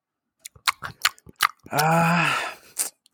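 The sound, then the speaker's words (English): Wet smacking and crunching of open-mouthed chewing, about a dozen quick smacks, broken by a drawn-out hum or groan before a few final smacks. “They chew with their mouth open.”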